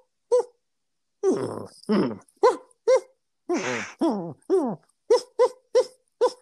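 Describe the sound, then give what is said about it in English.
A person imitates the whimpers of Dennis, a dog, dreaming in his sleep: about a dozen short, muffled yips and woofs, a few stretched into whiny pitch-bending cries, fairly loud, with no talking. “When he's dreaming, he'll just suddenly hear.”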